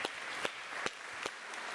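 A quiet patter of applause from a small church audience, a steady wash of clapping for a special presentation, with a few sharper individual claps standing out at regular intervals, and no voices.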